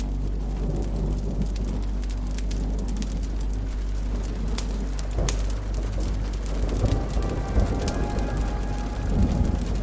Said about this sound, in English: You sit yourself beside a roaring fireplace as the rain pounds a cabin's tin roof.